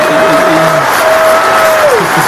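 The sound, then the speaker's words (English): An audience applauds loudly and steadily to welcome a guest, a dense wash of many hands clapping that holds at full strength for the whole couple of seconds without fading. “Please give it up”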